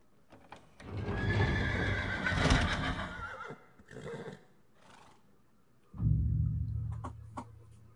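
A horse whinnies loudly and shakily for a couple of seconds, then gives a shorter call, followed by a deep low snort or blow near the end, with some hoof-like clatter.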